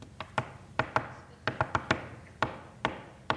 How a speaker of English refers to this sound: She goes to the cafe and the sandhill crane is beating its beak on the door. It sees its reflection and it's protecting its nest and it's protecting its territory from another male crane, another male sandhill